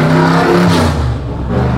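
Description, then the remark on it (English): A chromed-out car's engine revs loudly and continuously, its deep harmonic drone rising and falling with the throttle over a couple of seconds, with no voices over it. “Put a lot of money into that engine.”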